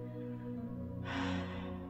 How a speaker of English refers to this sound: Breathing in, cleansing air, and exhaling all the toxins that no longer serve.